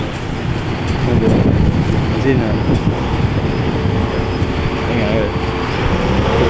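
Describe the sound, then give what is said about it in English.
A massive crane lowers a suspended panel, its heavy engine droning in a steady, loud low rumble with wind noise over the microphone and a faint murmur of voices underneath. “It's a massive crane.”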